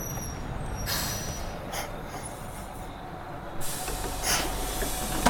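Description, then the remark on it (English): A bus rumbles, with sharp hisses of air brakes bursting out as it pulls up at the street and settles, steady engine noise underneath and no voices. “I took a step towards the bus and felt a hand tug on the back of my shirt, almost yanking me backwards.”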